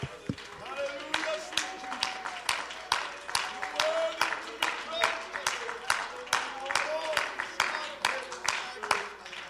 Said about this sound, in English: Can we give him a hand clap of praise one more time this morning?